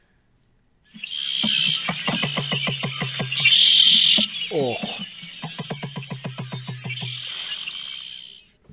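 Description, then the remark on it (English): An emu call: a run of low, rhythmic thumping pulses, like a hollow drumming, from a video recorded outdoors and played into a microphone, with birds chirping and twittering throughout the background. “I got a very good video of the emu sound. So I'm going to play it into my mic.”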